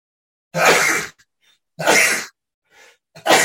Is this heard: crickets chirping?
no